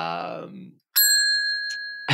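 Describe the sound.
A single bright bell ding rings out clear, its pure tones sustaining for about a second after a short vocal sigh, then another voice begins. The bell is hit as a cue whenever someone says "trade secret".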